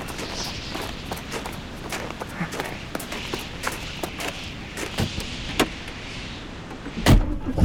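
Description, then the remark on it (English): A car door shuts with a solid thump near the end, after a stretch of scattered clicks and footsteps over a low, steady engine rumble, with muffled voices in the background. “This way, my car's up here.”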